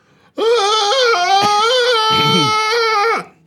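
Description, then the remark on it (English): A person imitates a Bigfoot mating call: one loud, drawn-out howl-yell held for about three seconds at a high, steady pitch with slight wavering, then breaking off abruptly. “after the only way to describe it would be a mix between a howl and a yell.”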